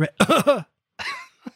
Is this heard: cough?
yes